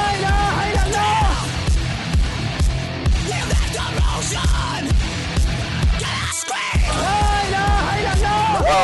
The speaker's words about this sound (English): Scream!